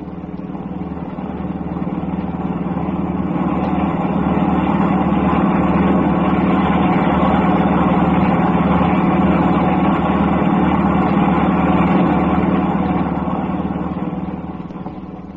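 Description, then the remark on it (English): A steady, loud engine drone with a low rumble, a car motor that has just started up again and drives on for miles, continuous throughout and fading slightly in and out at the edges. No voices. “The car starts up again.”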